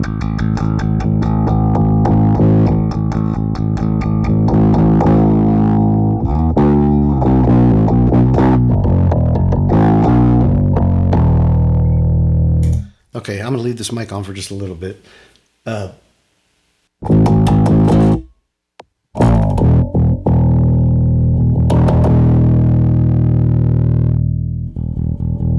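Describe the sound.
An electric bass plays through a mild distortion effect with the drive turned all the way down, ringing sustained low notes and a quicker run of picked notes, with a short break where a person briefly speaks.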